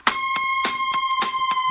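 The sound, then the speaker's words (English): A fire truck siren in a song: a loud, steady buzzing alarm tone layered with sharp, rhythmic clanging pulses about three times a second, with no voices. “Who's the fire trucks, man?”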